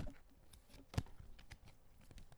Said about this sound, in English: But today, let's see, it's kind of exciting to have a physical deck as opposed to our usual online deck. So I'm going to let you hear me shuffle. Can you hear this?